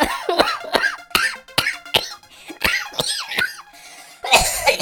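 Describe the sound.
A person imitates a cat hacking up a hairball: a rapid series of about a dozen raspy, gagging coughs with rising-and-falling voiced squeaks, ending in a harsher, noisy retch.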